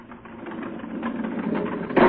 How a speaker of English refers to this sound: Let's slide open the door and see what's happened.